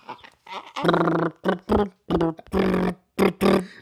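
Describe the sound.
A voice blows a string of buzzy, raspberry-like fart noises, about eight pitched bursts that follow a bouncy, sing-song melody, fairly loud with brief gaps between them.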